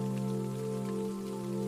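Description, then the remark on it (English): Light rain falling outside a window patters steadily and evenly, a soft continuous hiss with no breaks, layered over a low, sustained humming drone. “Tucked up in bed, with light rain falling outside the window, Lily begins to stir from a beautiful night's sleep.”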